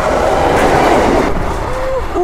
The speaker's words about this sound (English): Wow! You haven't been that close to a train like that? That's really good, isn't it? Oh. Exciting. Oh, it's taking my breath away, that is.